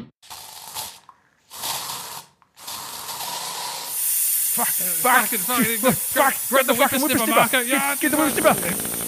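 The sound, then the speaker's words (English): Snakes hiss in several sharp, breathy bursts separated by brief pauses, fairly loud, before agitated voices break in over a lingering steady hiss. “Here's your bloody snakes back, you bastard.”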